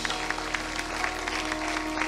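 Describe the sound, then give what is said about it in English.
An audience claps their hands together in steady, dense applause, many overlapping claps forming a continuous bright patter with no voices standing out. “Let's clap our hands one more time in Jesus' name.”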